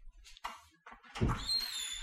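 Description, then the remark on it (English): A front door opens: a short rattle of the latch, a low thud, then a thin, high creak as it swings, all within about two seconds. “You guys, what door was that? My front door. Because can you open it?”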